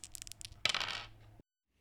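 A die, rolled by a player during a game, clatters across a hard table surface, a quick burst of rattling taps followed by a brighter tumbling roll that settles and stops, fairly loud with no talking.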